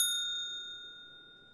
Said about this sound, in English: I'm going to hit the bell anyway.